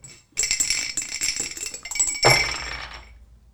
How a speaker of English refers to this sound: The only honest way to play dice game is while you're doing a podcast so you can hear the dice move.